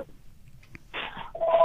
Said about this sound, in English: Okay. Hold on just a minute. We got three phones going here right now.